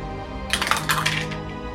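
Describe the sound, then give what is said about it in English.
A quick burst of hard clattering as dice tumble through a dice tower, rattling against each other and a hard surface for about a second, fairly loud, with no talking. “Dice Tower started out so strong tonight.”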